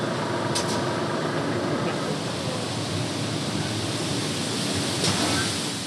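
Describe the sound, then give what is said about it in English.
A steady, dense rushing hiss of grain pouring from a truck's raised bed into a ground grating at a grain silo dumping area, loud, continuing evenly throughout without pauses or voices. “Grain pours into a grating in the ground, making huge clouds of dust.”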